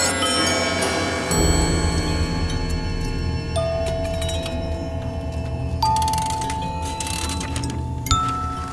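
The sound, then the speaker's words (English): A doorbell at a darkened door rings in a series of bright, sustained chime tones, with new strikes roughly every two seconds layering over the lingering ring. No one speaks. “In minutes, I was standing in front of a darkened door, ringing a bell.”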